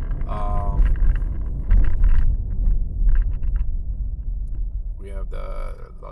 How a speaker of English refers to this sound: Sorry, I am driving.